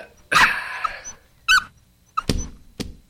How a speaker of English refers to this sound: Oh, look at the little doggy. Run, Lisbon! Run!